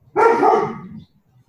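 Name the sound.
dog barking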